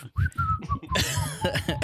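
A person whistles a brief, wavering tune for under a second, then it breaks off into a harsh, breathy burst like a cough or throat clearing.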